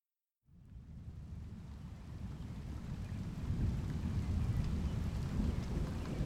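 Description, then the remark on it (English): A deep, steady rumble of thunder starts abruptly and rolls on without a break, swelling a little louder partway through. No voices can be heard. “The rumbles that you've been hearing get closer.”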